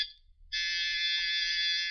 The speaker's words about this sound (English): The doorbell is ringing. Well, let it ring. Maybe they'll go away.